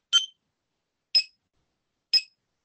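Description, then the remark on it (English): A clicker ticker breathing pacer gives three short, bright clicks at an even pace about one second apart, each a crisp high-pitched tick with silence between. “In order to do it properly, you need one of these, which is a clicker ticker.”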